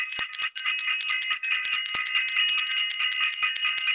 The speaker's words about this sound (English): Y'all hear that bell?